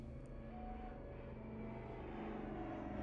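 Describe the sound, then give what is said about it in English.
A steady, droning airplane engine hums with a low rumble, growing slightly louder as the plane approaches over the mountains. It is continuous, with no voices. “The sound of an approaching plane broke George's train of thought.”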